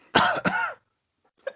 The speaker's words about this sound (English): And that is the perfect cough. That's a snooker cough if I've ever heard one.